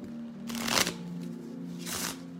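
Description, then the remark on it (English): Two quick riffle bursts of a deck of playing cards being shuffled, crisp, with a faint steady hum underneath and no talking. “Let's give these a nice shuffle.”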